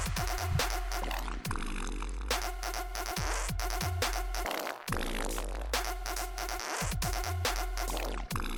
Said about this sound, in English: This is a trap song using actual fart sounds personally recorded and sampled by myself. Special thanks to the friends whom dedicated their actual farts to this song. A lot of wet ones. there's some juicy ones up in that batch.